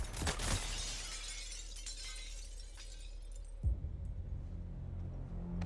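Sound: glass shattering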